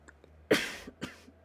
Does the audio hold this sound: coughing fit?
yes